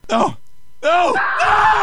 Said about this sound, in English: There were screams, tears, and pleas for mercy.